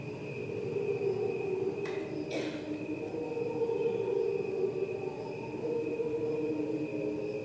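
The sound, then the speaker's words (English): Cricket chirping slowed far down into a steady, layered, choir-like hum of sustained tones, holding even loudness throughout, with a couple of brief airy swishes early on. “This is just the sound, that cricket sound we hear, we're so used to, slowed right down.”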